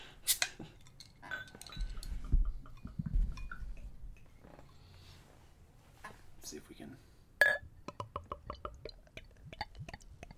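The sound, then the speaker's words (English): Beer glugs and splashes as it is poured into a pint glass, with glassy clinks and a sharp knock partway through, followed by a quick run of light taps. “I'm gonna pour perfectly into my perfect pint.”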